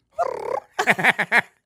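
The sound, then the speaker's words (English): A person imitates a dove call: one throaty, warbling coo, then four short rising-and-falling hoots in quick succession, fairly loud. “what bird was that? She was a roulette table. It was a dove.”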